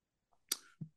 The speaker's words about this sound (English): Okay, let's try virtual. I'm going to roll that. Roll that dice. With a click of a mouse.